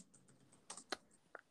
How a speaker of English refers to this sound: Sorry if you can hear my aggressive typing.